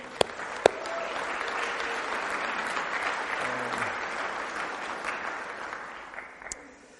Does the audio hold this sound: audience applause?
yes